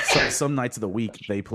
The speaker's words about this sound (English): Bless you.